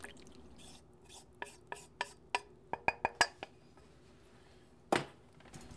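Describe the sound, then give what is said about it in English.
A whisk clinks against a bowl of melted chocolate, butter and hot cream in a quick run of sharp taps that bunch closer together, then a pause and one final louder clank. Fairly quiet, with no talking. “Take a whisk and just whisk until all of that is melted into one mass.”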